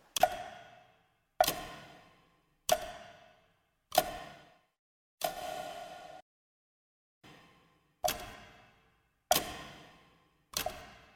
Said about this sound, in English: And tick tock, tick tock.